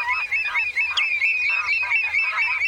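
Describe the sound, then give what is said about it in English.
A dense chorus of wetland birds, including redshanks, coots and lapwings, at a wetland National Nature Reserve, calling with overlapping goose-like honks and cackles that keep up steadily throughout, loud, with no talking. “Redshanks, coots, and lapwings are just a few of the fine-feathered friends who sing, wing, and strut their stuff at this wetland.”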